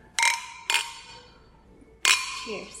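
Beer glasses clink together three times in a toast, two quick ringing taps followed by a pause and a third bright clink, each chime fading out; a faint voice murmurs briefly at the end.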